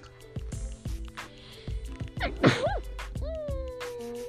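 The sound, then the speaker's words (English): A single sharp sneeze bursts out midway, set against a steady background of rhythmic music with a regular beat. “In America, I'm about to sneeze.”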